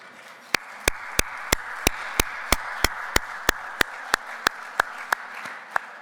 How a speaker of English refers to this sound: those applause were for you, personally. I want you to know that.